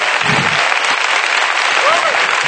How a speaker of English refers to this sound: Amen. Let's clap our hands and give Him praise right now.